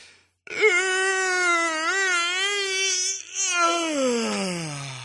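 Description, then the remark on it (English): A drawn-out, exaggerated voiced yawn: one long loud moaning tone, steady and slightly wavering, with a brief break before sliding down in pitch to a low groan at the end. “You're verbalizing your yawn because you want me to notice you yawn, and it bugs me.”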